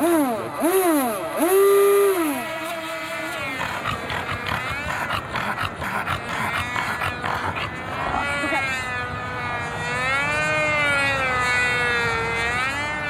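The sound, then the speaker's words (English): Busy outdoor ambience at the Whittier Narrows recreation area, at a professional racetrack for boats, with whining motor tones that rise and fall in pitch, some sharp bursts, and a steady wash of background noise throughout. “Those were the sounds of the Whittier Narrows recreation area.”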